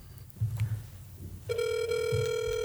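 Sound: outgoing phone call ringing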